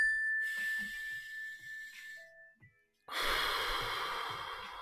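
A single mindfulness bell rings with a clear, sustained tone that slowly fades, and then a deep breath rushes in loudly as the ringing dies away.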